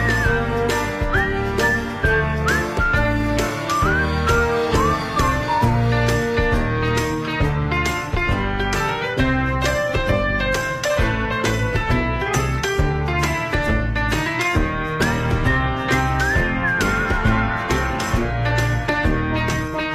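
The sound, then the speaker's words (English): A bright, upbeat instrumental outro tune with a steady beat, and a whistled melody gliding on top that rises and falls in short phrases, loud throughout. “like, to almost describe the whistle, like, it's a satisfactory whistle. Yeah, it's just like, it's like a victory whistle.”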